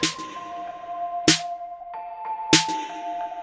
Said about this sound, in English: We have these bell-like keyboards, this sort of low xylophone, this other high ethereal cloud-like beautiful thing on top. And then basically a very simple snare and kick drum, but there's not a lot of material here for us to respond to.